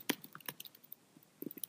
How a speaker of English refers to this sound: Oh, she's typing, y'all. She's got a custom card.